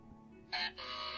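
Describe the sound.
A voice imitates a toothbrush scrubbing: two bursts of hissy, breathy noise, a short one followed after a brief gap by a longer, steady one, fairly loud with no talking.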